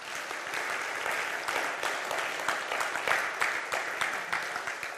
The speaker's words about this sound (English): So thank you. Why don't you just give yourselves a round of applause? I think it's amazing.